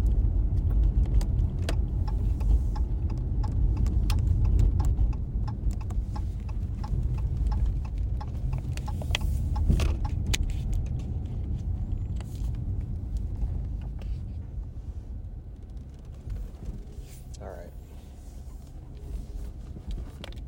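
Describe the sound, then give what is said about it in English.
A car rolls along with a steady low engine rumble from inside the cabin, scattered light clicks and taps over it, then eases off and quiets as it slows to a stop, pulling into a small parking lot. “Park and eat this sandwich. Nice little lot.”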